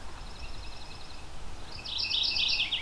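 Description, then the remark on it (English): A mourning warbler sings, starting with a faint run of high chirping notes, then a louder, richer burst of rapid warbled phrases. No one speaks. “So note about the name on this, this is morning warbler as in mourning a loss or death, not as in the first part of the day.”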